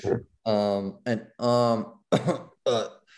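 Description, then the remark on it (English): A man's voice makes a run of loud, exaggerated throat-clearing and coughing noises, about six rough voiced bursts in quick succession, sounding like an imitation. “I hate how he's always clearing his throat and coughing and all that bullshit he does.”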